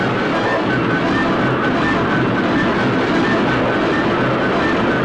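A train runs on rails with a steady, loud, dense rumble and rushing noise that holds unbroken for the whole stretch, close by and without a clear clack rhythm.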